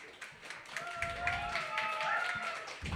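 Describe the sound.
A small audience at a Brooklyn Poets monthly Yawp open mic applauds a future workshop reader steadily for a few seconds, a dense patter of hand claps at moderate volume with some voices and a whoop or two mixed in.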